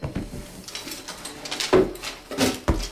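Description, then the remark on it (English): A top drawer slides open with a wooden scrape, followed by clattering and knocking as the junk inside is shuffled and rummaged through, moderately loud, with no voices. “You wanna get that top drawer?”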